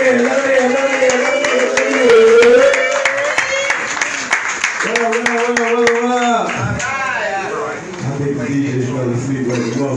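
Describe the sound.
An audience claps steadily throughout for the next performer coming up to take a couple of minutes, the sharp clatter of many hands running under loud voices that cheer and call out, with a strong rising shout in the middle.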